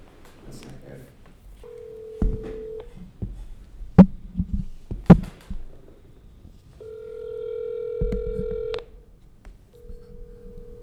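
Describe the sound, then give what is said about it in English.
An outgoing phone call rings: steady electronic ringing tones repeat in bursts a few seconds apart, with sharp clicks and faint muffled background noise between them, heard through the line. “I'm calling right now.”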